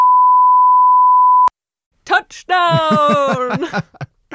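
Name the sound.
censor bleep tone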